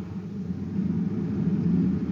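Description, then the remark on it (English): A car engine drones steadily while driving along a side road at the deserted end of a spaceport, speeding up to pass another car before the gate, a low continuous rumble that grows slightly louder partway through, with no voices over it. “Speed up, Bob. We can pass him before he gets to the gate.”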